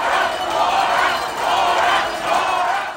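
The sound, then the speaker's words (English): A crowd cheers and shouts continuously at a governor's debate at the state fair in Hutchinson, Kansas, a dense, loud wash of many voices that swells in waves over a few seconds, with no single voice standing out. “Democratic Governor Laura Kelly riled up the crowd”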